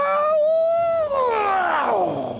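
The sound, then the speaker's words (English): A person mimics a dog's howl: one loud, drawn-out wail that holds steady, then slides downward in pitch toward the end, with no other talk. “And I think, like, you just hear, like, a howling, no!”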